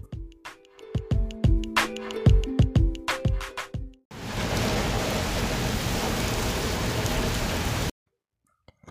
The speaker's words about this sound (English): After a few minutes, it started to drizzle. The rain was getting stronger.